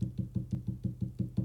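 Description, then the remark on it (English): A person imitates the tail of a beagle named Raisin wagging on a lazy boy chair: a rapid, steady run of about nine dull, low thumps, fairly quiet, with no talking. “And that was his tail wagging on the chair.”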